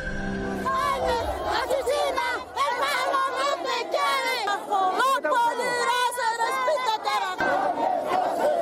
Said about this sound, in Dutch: Kijk, ik hoor boze mensen. Ja, waar denk je dat ze vandaan komen? Nou, ik gok uit een Zuid-Amerikaans land. Nou, dat heb je helemaal goed gegokt in één keer. Ze komen uit Bolivia.